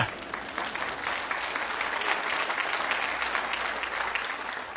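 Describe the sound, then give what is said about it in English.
An audience claps steadily, a dense wash of many hands that holds at an even level for several seconds without anyone speaking over it. “You could clap, sure.”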